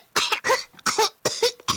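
A close, loud series of harsh throat-clearing bursts, about four or five rapid rasping hacks in quick succession with brief gaps between, no speech.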